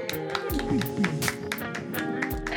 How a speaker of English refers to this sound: Got to stagger a little bit. There we go. This is a wave of claps. Had to get it out. That's right. You had to elongate.